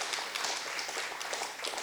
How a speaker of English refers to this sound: Y'all are, give me a hand clap or something, you know, every now and then. Amen.